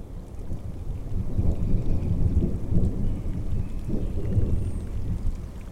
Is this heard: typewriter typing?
no